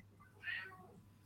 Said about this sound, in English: Right, I've got the other cat coming to attack me now.